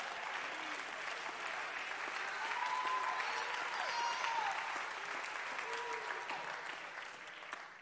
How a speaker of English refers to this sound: You ought to clap your hands right now.